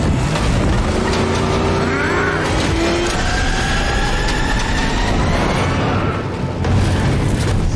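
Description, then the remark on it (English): A loud, dense action sequence from a Batman movie: the Batmobile car chase on a highway, with engines roaring and revving in rising and falling pitch over heavy rumbling booms and crashes, sustained throughout with no talking. “You saw one of the action scenes in the trailer where they keep showing you that car chase with the Batmobile.”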